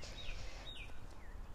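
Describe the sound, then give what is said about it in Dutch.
Faint, high chirping calls of many small birds, a few short whistled notes rising and falling, over a steady low rumble of background noise, recorded behind a hotel on Curaçao in January. “Zoals je net misschien hoorde op de achtergrond, die vogel. En heel veel vogeltjes.”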